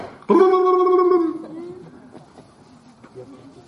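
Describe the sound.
A voice imitates a turkey gobble: a sudden, loud, warbling burst with a rapid throaty rattle lasting about a second, then trailing off into quieter murmuring.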